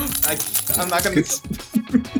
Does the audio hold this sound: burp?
no